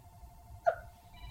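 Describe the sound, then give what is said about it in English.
An office phone rings faintly, with steady electronic tones and a brief brighter chirp partway through, then a higher tone near the end. There is no talking. “Look, the podcaster's got to shut off his phone.”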